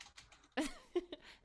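A short burst of typing on a computer keyboard: a handful of irregular key clacks, with one louder cluster of strikes in the middle and no voices.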